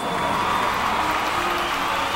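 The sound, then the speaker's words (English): A lively crowd at a performance cheers and applauds in a steady, dense wash of noise that holds at an even, fairly loud level for about two seconds, with no single voice standing out. “I love a lively crowd.”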